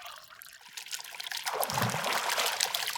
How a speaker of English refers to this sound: The bath tap turns and the water comes out of the tap and runs into the bath. Slowly, the bath fills with nice warm water. Not too hot and not too cold.